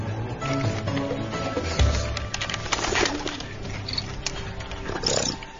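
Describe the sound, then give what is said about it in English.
Stoffel the honey badger growls in low, rough, continuous rumbles for several seconds, steady, with some scuffling noise in the background and no one speaking. “Ah, Stoffel the honey badger.”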